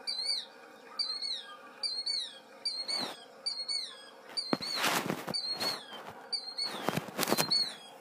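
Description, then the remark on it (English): A killdeer calls over and over, shrill, high two-note cries repeating in a steady rhythm, with several louder, harsher bursts partway through. No one speaks. “We got a lesson on the killdeer. And now it's going to continue. Here is what they sound like.”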